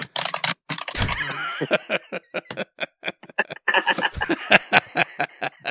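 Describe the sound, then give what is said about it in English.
Loud, rapid clattering of a computer keyboard being typed on, sharp clicky keystrokes in quick irregular bursts, with no talking. “Most obnoxious keyboard, bro.”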